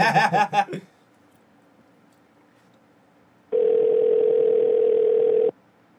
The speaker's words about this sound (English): Phone is ringing.